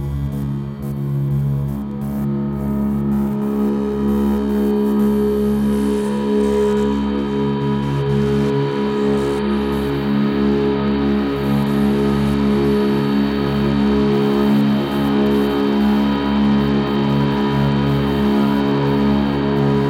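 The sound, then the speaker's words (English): A long reverb wash from the Cathedral, set to the Grail Spring algorithm with its reverb time turned up, turns layered low and mid tones into a steady, unbroken drone that holds at an even loudness for the whole stretch, with no voices. “Turning up the reverb time on the Cathedral there to see what happened.”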